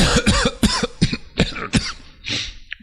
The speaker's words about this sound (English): Oh, nothing. I'm just clearing my throat.